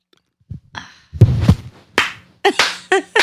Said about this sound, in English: He's got me slow clapping. I was waiting. You could have at least joined in.